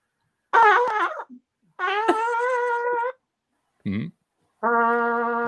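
A bugle that has been shot at is blown in several separate notes, some wavering and some held steady, with a mellow, rounded brass tone, fairly loud, with brief pauses between blasts and no talking.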